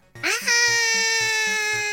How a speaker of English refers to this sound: Bob 242A had put his hand over Bob 242B's mouth. Stop screaming for once so I can think.